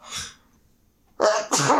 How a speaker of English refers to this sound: It's like being next to a Foley stage over here. Why does sneezing. It always happen when I start on the podcast?